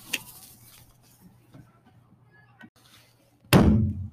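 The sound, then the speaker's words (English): A door slams open with one loud bang near the end, its heavy thud ringing out briefly after several seconds of quiet low hum and faint clicks. “The door slammed open, and there she was, Siri.”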